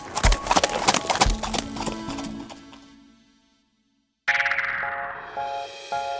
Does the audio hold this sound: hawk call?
no